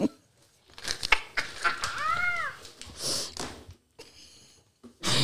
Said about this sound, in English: This nigga over here sneezing on the mic. Okay. Bless you, brother.